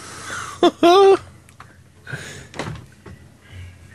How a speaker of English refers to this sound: He's breathing heavy.